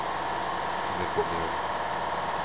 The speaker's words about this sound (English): And one of the tanks just turned on. Yeah, I think we're brewing all of a sudden.